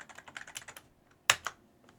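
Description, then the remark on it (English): Rapid keyboard typing with a quick run of light clicks, then a brief pause before two sharper, louder key strikes. Someone is typing a post announcing that this week's poll is live. No one speaks. “This week's poll is live. That's what I'm typing right now.”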